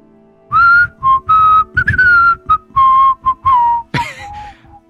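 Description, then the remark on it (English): A person whistles a quick, bright tune of about a dozen separate notes, some gliding and some clipped short, loud, with a short breathy burst near the end. “Do we try whistling back?”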